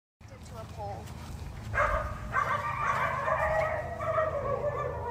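Several dogs bark and yelp in a loud, overlapping chorus that starts about two seconds in and keeps going, over a steady low background rumble.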